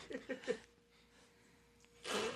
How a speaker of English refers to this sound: Oh, I sneezed. What? I can't sneeze.